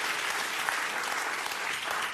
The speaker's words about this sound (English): That gets applause.